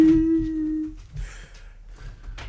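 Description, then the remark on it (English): A person imitates a whale call with one long, steady, slightly sliding hum lasting about a second, fairly loud, followed by soft shuffling and low background noise. “Can we figure out what the name of the whale is? Don't know if it had a name.”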